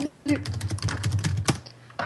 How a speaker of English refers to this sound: Hang on, I'll look it up. I'm gonna type for a minute. This is me typing.